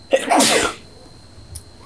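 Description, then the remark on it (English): A single sharp sneeze bursts out, a quick intake followed by a loud explosive blast, then quiet. “Bless you.”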